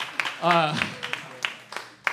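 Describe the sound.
A few scattered, irregular hand claps, a thin round of applause from a small group for two basketball researchers, with a voice speaking over the first part.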